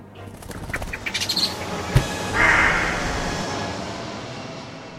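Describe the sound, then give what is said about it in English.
A bird gives a quick run of short, harsh calls, followed by a sharp knock and a steady rushing background noise. No one speaks. “Look, up in the sky. It's a bird.”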